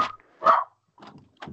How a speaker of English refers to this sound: Sorry, my dog.